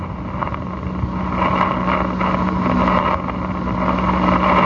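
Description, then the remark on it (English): A racing car roars down the track in a steady, continuous drone with a low humming tone, loud, with rushing wind-like noise around it and no voices. “That car roared down the track about a quarter of a mile with him hanging on to the tail of it.”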